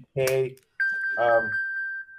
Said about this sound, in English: Whose phone is that? Hey, he's trying to tell us it's time to go.